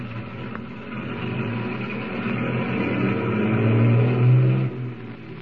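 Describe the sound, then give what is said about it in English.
Heavy engines of Tumbleweed's motorcade of tank trucks rumble in a steady drone, their pitch climbing as they accelerate, then easing off near the end as the convoy pulls away on its way to the Bear River Refinery. No voices. “Saved from almost certain disaster, Tumbleweed's motorcade of tank trucks continues on its way to the Bear River Refinery.”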